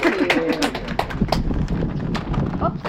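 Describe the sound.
A crowd claps steadily, a dense patter of many hands that stays loud and even for the full few seconds, with some voices mixed in underneath.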